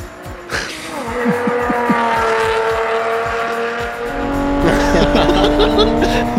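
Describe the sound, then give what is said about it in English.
A sports car with a rear-mounted V12 engine, rear-wheel drive and a lightweight carbon fiber monocoque revs loudly, climbing through quick gear changes, then a harsh rush of noise as the car brakes hard near the end. “Oh, and then the brakes pull you down.”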